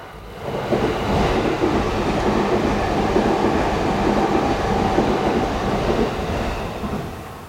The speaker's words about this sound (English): Oh, hold on, let me let this train go by. Here it comes.